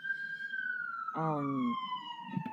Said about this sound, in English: Thank you, New York sirens. Yeah, that's me, guys. Sorry about that.